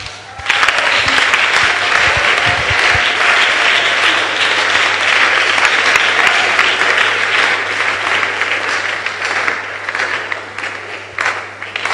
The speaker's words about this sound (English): Clap your hands again and celebrate the Lord.